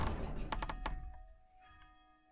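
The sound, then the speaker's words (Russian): A few dull thuds, then a faint church bell ringing again, with a long sustained hum of overtones that slowly fades. No one speaks. “У нас, кстати, опять звонит колокол.”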